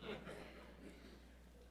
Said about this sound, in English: Sorry about that. I gotta clear my throat there.